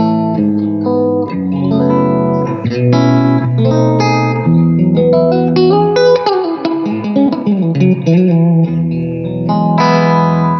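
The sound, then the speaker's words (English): A clean electric guitar, played through the clean channel of an M1 amp with a little bit of reverb, strums and picks chords, notes ringing out with a soft reverb tail. It plays steadily at a moderate volume for about ten seconds, with no talking. “Yeah, there's a clean channel, which is like this.”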